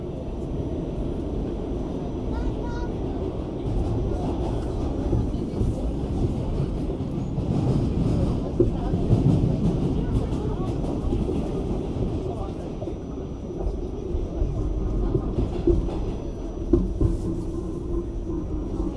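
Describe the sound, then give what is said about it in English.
A train rumbles past steadily, a dense low roar with faint rattling and clacking that stays fairly loud and even throughout. “By the rumbling of a train or the screech of tires?”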